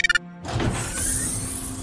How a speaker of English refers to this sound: The door in front of you hisses open.